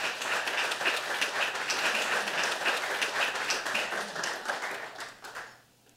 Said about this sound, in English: Please give a big round of applause for Abby Smith Rumsey.